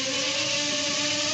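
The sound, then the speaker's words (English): A small drone being test-flown buzzes the microphone, its rotors whining in a steady, loud buzz that holds a mid-pitched hum with a hissing, airy edge and no pauses, with no talking over it. “Buzzing the microphone. That seems to be slightly hard to control.”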